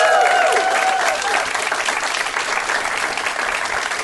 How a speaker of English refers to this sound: Fantastic comedy venue that has comedy and music every night of the week. Could we have a big, massive round of applause for the Glee Club?